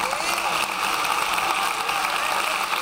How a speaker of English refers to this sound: Well, all right. Give her a hand clap.